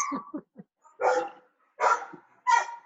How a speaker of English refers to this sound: Dogs are just barking away over there.